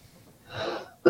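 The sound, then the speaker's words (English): A raspy, wheezing intake of breath followed by one short, sharp cough, loud, with no talking around it. “It's a bit hot over here. I keep coughing.”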